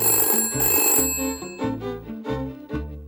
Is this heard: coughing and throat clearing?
no